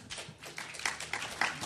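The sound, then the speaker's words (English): A short burst of audience applause, many hands clapping in a dense, irregular patter, moderately quiet, with no voices over it. “Take time for applause.”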